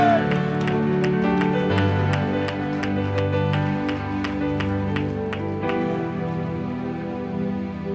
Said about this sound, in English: Oh, that you will begin to clap and say amen.